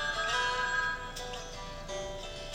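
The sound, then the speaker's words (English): A telephone rings with a steady, electronic warbling tone that repeats in short bursts, heard clearly with no one talking over it. “We didn't even hear the phone.”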